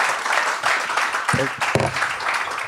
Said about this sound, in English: A round of applause.